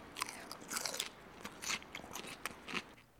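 Crisp, crunchy chewing of salad, with bright crackling bites repeating in an irregular rhythm of about five or six bursts. No talking, just steady mastication with a faint background hiss.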